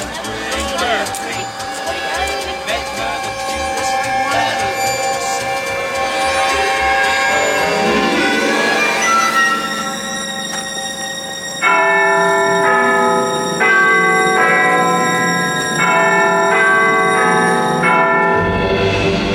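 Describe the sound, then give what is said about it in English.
Eerie, creepy orchestral strings of a film's score swoop upward out of a busy, muddled passage as they interrupt a song in the film, then hold loud, high, shimmering chords that shift in stepped blocks, tense and unsettling. “So we're reminded once again that it comes in with those eerie, creepy strings that sort of says, actually, this is not squeaky clean.”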